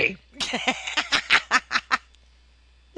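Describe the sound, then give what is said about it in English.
A voice imitates a hawk's squawk as a sound effect: a quick run of about eight harsh, raspy squawks, fairly loud, ending abruptly before a second of quiet. “Okay, and we're going to do the chibi version of special effects here. Squawk!”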